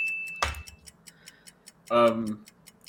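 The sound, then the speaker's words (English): A game timer ticks in a steady, quiet rhythm, opening with a sharp click and a short high beep, while a voice briefly speaks over the ticking near the end. “Time's up. Timer.”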